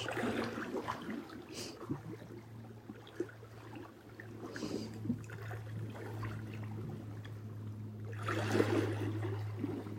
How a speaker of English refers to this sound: Just feeling into the song of the water this morning. The whoosh. The washing over. Breathing in the air. It's a hint of fishiness in the air. It's quiet except for the water. Whoosh.